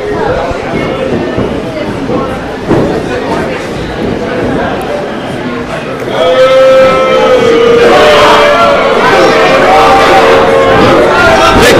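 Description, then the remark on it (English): A large crowd roars and heavily boos the champions during a wrestling match, the din growing noticeably louder about halfway through, with long, drawn-out vocal tones rising above the steady wash of noise. “The champs are being heavily booed right now.”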